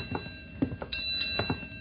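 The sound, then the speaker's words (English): A ship's bell strikes four bells, a handful of sharp metallic clangs grouped roughly in pairs, ringing out moderately loud over a faint steady background hum with no talking. “It's four bells now.”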